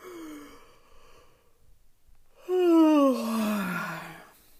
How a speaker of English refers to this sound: Let's do one big yawn together.